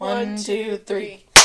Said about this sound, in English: Oh shit, one more clap.